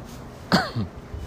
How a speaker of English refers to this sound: Oh, I just coughed in the store, oh no.